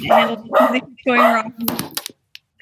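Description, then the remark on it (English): A dog named Holly barks three times in a quick, even rhythm, each bark drawn out and fairly loud, followed by a few sharp clattering knocks before it goes quiet. “Clay just gave his dog DayQuil. Holly, enough.”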